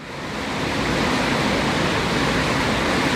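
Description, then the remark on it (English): A steady, dense rush of water falling from waterfalls beside a wooden walkway between narrow cliffs on El Camino del Rey roars without pause, a broad hiss filling every range from low rumble to high spray, with no voices or other sounds. “You have a wooden walkway with waterfalls. You can probably hear the sound of falling water.”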